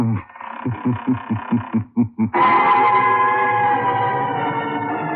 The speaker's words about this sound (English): Where are we going? Through the creaking door, of course.